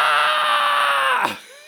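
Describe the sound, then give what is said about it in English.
A person lets out one long, loud, shrill scream, held steady for over a second before breaking off sharply, imitating a bloodcurdling shriek. “proceeded to scream bloody murder again until Andrew came”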